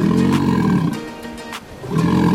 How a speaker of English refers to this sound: Amazing animals. The sea lion.